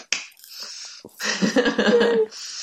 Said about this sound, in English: Clap, clap, clap.